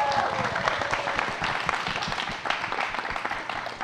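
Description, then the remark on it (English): A crowd applauds steadily for a couple introduced on stage, dense overlapping claps forming a continuous wash of sound that holds fairly even throughout, easing off slightly toward the end. “We'll give a round of applause to each individual couple.”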